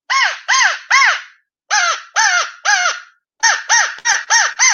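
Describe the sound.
A Woodhaven Real Crow handheld crow call blown to give basic crow calls: loud, harsh caws in bursts, three, then three more after a pause, then five quicker ones. No talking.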